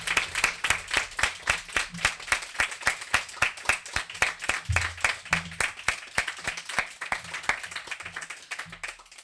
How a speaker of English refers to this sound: Hey, everyone, give a good hand of applause to Nils Røkke for today, babe.